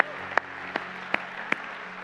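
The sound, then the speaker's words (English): Four sharp hand claps land on a steady, even beat, as if a group is clapping together in unison, set against a low, constant hum with no talking. “If you believe that, just give a hand clap and say, yay, God, praise God.”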